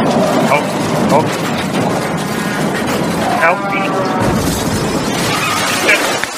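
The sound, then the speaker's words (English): A tractor trailer crashes through a room in a loud, sustained roar of smashing and grinding wreckage lasting several seconds, while a voice cries out briefly over the din. “Just drove a tractor trailer through the room.”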